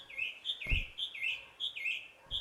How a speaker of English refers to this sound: Don't forget to feed the birds when you can, said the bird, and flew high up into the sky.